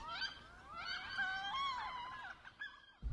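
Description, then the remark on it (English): Wood duck flight calls: high, squealing whistles that rise and fall in pitch, several overlapping in a steady stream for about three seconds before a brief low thump at the end. “The wood duck's call is a high-pitched whistling noise that it will make in flight.”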